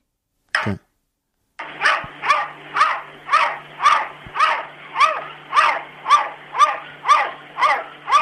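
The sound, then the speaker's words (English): A cat barks like a dog out of a window, letting out a steady run of about a dozen loud yaps roughly two per second, after one brief sharp cry and a short pause. “This is a cat who has learnt to bark like a dog.”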